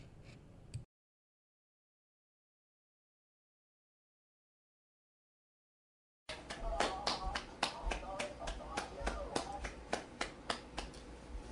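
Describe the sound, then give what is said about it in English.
After a few seconds of silence, a rapid run of sharp hand claps, made to open a talk about a low-budget movie, begins and keeps a fairly steady rhythm, with a voice faintly audible beneath them. “I just want to start this movie off with a clap, because this is one of the underrated low budget movies I ever seen.”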